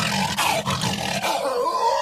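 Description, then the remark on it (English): Voice actor Frank Welkler roaring into a trash can, a recording used for most of the roars in The Lion King: a deep, rasping, hollow, echoing roar sustained for about two seconds and rising into a higher, strained tone at the end. “It is a bloke called Frank Welkler who basically just roared into a trash can.”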